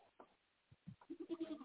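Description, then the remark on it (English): A goat lets out a wavering, quavering bleat near the end, preceded by a few short, low grunting sounds. Moderately loud, with no talking. “Yelling at my goat.”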